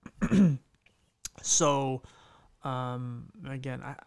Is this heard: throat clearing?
yes